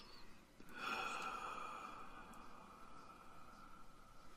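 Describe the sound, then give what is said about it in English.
A slow, deep breath drawn in and let out during a guided Ave Sol breathing exercise, soft and breathy, with a faint sustained musical drone humming underneath and no talking. “Closing our eyes, we're going to take in 3 more Ave Sol breaths and just bask in that energy.”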